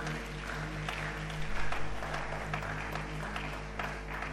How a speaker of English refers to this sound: If you are here with me, give Him praise and give Him thanks by clapping your hands to Jesus.